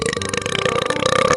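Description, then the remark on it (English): A single long, loud burp, rumbling steadily for over a second with no talking around it. “Sorry, forgot to mention that he burps and farts all the time.”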